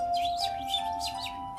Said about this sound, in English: A pleasant atmosphere of birds chirping. Melodic notes that fill the air and match the vibrant colors of the castle's exterior walls. And yet, the more you listen, the more something feels off about it. Something hollow and artificial.